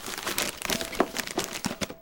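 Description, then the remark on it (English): Crisp crinkling and rustling of paper wrapping and strings being pulled and peeled back off a book, with irregular bursts of crackle and a few sharper tearing snaps over about two seconds, no voices. “Yeah, you begin to peel away the paper that's the strings in the paper that's binding this book.”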